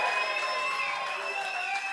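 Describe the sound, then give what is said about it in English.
An audience claps and cheers in a steady, dense wash of applause. Bright, sustained whoops ride over the clapping, which stays at an even loudness for the whole two seconds. “You're right. Clap. He's a hero for that.”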